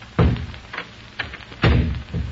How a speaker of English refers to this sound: Come, Victor, my study. It is the only place in this chateau I permit business to be transacted. A moment. I close the doors.